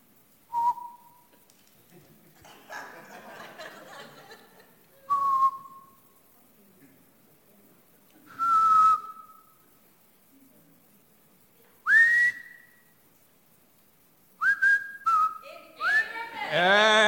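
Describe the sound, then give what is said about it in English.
Someone whistles a tune one note at a time: clear, clean tones separated by long pauses, some sliding upward, with the final notes coming quicker and slightly higher. Faint background rustle between notes. “Maybe I'm just going to whistle just a note at a time and yell out loud enough for these deaf ears to actually hear when you understand what the song is.”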